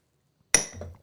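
A single sharp clink of shot glasses tapped together in a toast, bright, with a short high ring that fades into faint handling noise after a moment of silence.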